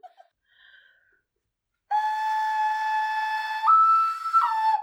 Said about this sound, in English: That was my bird. I think the bird needs to be consigned. I think the bird is, like, outshining me a bit, so I think maybe we should put it down.